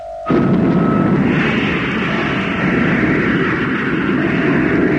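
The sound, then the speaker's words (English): A sudden, powerful roar bursts in after a brief tone and holds steady at full loudness, a dense rumbling blast of an atomic rocket motor firing continuously at full power. “Atomic motor, fire.”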